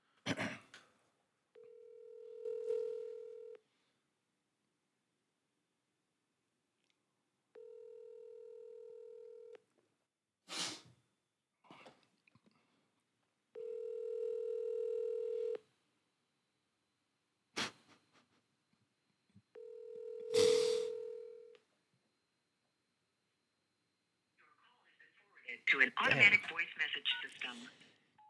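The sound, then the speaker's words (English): A telephone call rings through and nobody picks up: four steady, low-pitched ringback tones of about two seconds each, spaced by pauses, with sharp clicks in between and a brief burst of muffled noise at the end. “I think they okay, rang through, it. Just nobody picked up.”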